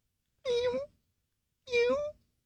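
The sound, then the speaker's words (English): An adult cat meows twice, each call about half a second long with a rising-then-falling tone, separated by a short pause. The meows are clear, with no other sounds around them. “Now that's actually a full-grown cat right there, but I didn't really have a kitten handy.”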